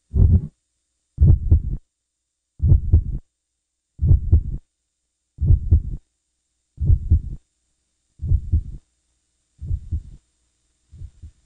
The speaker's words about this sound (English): Raskov could hear the muffled heart beating, beating.